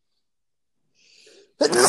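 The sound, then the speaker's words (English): A single loud sneeze bursts out after a quick sharp inhale, with no talking around it. “Bless you.”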